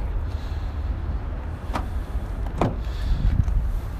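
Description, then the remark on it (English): A car door is unlocked with a key and opened: a few sharp mechanical clicks and clunks spaced about a second apart, over a steady low background rumble. “You know what's a lot easier is just putting the key in. That works. Or we need it unlocked.”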